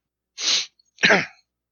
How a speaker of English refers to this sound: That's no joke. I actually did have a sneezing fit.